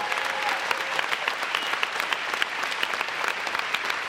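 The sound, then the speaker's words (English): An audience claps their hands to the Lord in a dense, continuous burst of applause, many overlapping sharp claps forming a steady, loud wash of sound with no talking. “Clap your hands to the Lord all over this place.”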